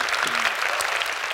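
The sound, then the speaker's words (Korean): An audience claps steadily, a dense, even patter of many hands sustained at a moderate level throughout, with no one speaking. “박수 한번 안 주십니까?”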